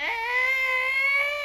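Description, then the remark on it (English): A voice imitates the creaking of a gym class gate with one sustained, high, whining tone that swoops up at the start, then holds steady and strained for over a second, loud and alone. “Yeah, no, and the gate would like move and creak.”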